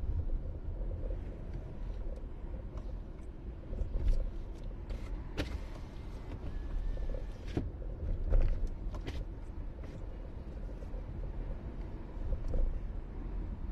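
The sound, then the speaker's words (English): A pack of ATVs rides past on Broad Street in Edgewood, Rhode Island, riding with no lights on, their engines a steady low rumble with a few sharp surges as the group moves by, with no talking. “The ATV's invade Broad street in Edgewood RI”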